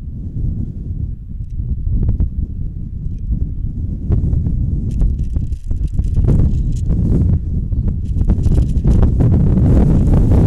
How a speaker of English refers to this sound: And again, the wind really giving me a gust now. Wow. I was trying to take my table and knock it over.